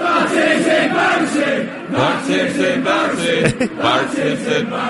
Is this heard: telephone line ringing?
no